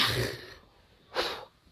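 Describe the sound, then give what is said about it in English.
Two short, breathy sneezes burst out, the first longer and noisier, the second a brief sharp puff about a second later, with quiet in between. “Are you going to sneeze?”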